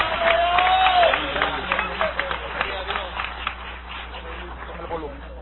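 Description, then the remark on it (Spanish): Crowd applause given in praise of God, with dense, rapid clapping and cheering voices, loudest at the start and slowly thinning out. A brief high whistle rises over the noise early on. “Dale ese aplauso de gloria al Señor.”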